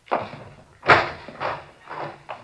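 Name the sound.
door opening and closing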